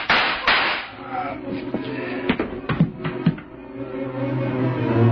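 A quick, uneven burst of four or five sharp gunshots fired into a man cracks out over a sustained, droning musical backing, each shot a hard, loud impact.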